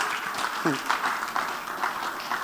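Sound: audience clapping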